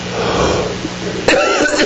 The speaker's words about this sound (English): There we go. Now I won't cough at least for another 3 minutes.